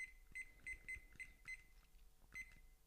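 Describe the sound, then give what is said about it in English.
A kitchen timer being set to 7 minutes, giving about six short, high-pitched electronic beeps at an uneven pace, like buttons being pressed, with faint handling noise and no talking. “This timer, by the way, I think is supposed to be for cooking, but sure, we use it for a wee 7 minutes in heaven.”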